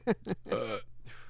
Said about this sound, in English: Oh, God. Hey, cut that out. No burping.